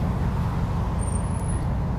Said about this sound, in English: Oh my god, here comes a truck called Kung Fu Grip. That's interesting. It's got lightning bolts on it. KFG, baby.